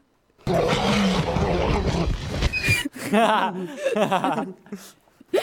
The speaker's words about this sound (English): I think out of everything, the roar is the one that stands out to me. The T-Rex roar, I think, is one of the most unsettling, scary sounds I think I've ever heard in a movie. Like, it's a very elephants, man. It's a very powerful, intimidating sound.